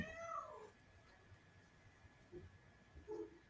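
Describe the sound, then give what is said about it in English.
A cat under a desk meows once at the start with a drawn-out, falling cry, followed by a couple of fainter short chirps later, quiet, with no talking. “There's a cat under my desk.”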